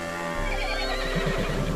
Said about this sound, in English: Oh, it's a horse.